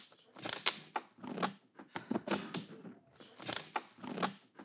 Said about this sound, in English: I was scratching the water bottle.